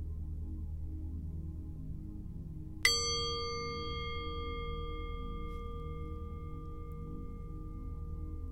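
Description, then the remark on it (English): A single meditation bell is struck once, ringing out with a clear, pure tone and bright overtones that sustain and slowly fade over a soft, steady low drone. “Breathe gently for a moment, and the bell will sound shortly.”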